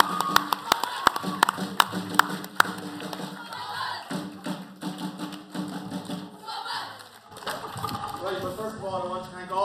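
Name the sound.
audience applause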